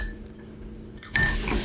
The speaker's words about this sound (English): As we both take sips of our lovely libations.